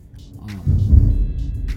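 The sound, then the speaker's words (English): Thunder on a rainy day with lightning: a deep, low rumble swells up after a quiet start and rolls on heavily for about a second before easing slightly, with faint hissy sounds above it. “If you can hear it, if that picked it up, don't mind the thunder.”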